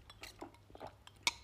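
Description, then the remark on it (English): A few soft, breathy slurps as someone sips coffee from a cup, ending in one sharp, bright clink of ceramic. No one speaks. “I'm sorry, I had to take a sip.”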